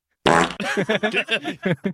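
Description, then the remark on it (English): A loud fart sound effect played from a soundboard: a sharp raspy blast, then a drawn-out string of wobbling, sputtering flaps lasting under two seconds, with no talking over it. “Oh, no, it means do a fart.”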